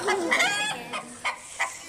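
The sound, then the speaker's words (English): A chicken clucks in a quick series of short, bright calls, a longer squawk first, then three clipped clucks spaced about a third of a second apart, clear with no talking. “Chicken.”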